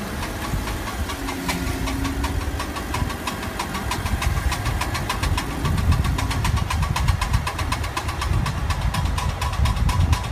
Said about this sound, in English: Next up, we're going to talk about a finger snapping, popping, or clicking sound you might hear from the car.